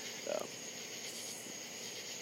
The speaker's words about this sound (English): Those are real crickets. I didn't pop those in. The frogs aren't doing their thing right now, as far as I can tell. I don't think that's frogs. I think it's crickets.